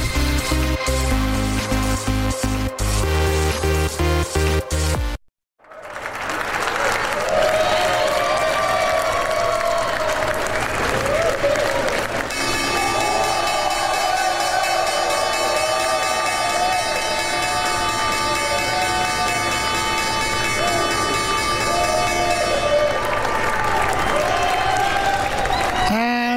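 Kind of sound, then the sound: crowd, applause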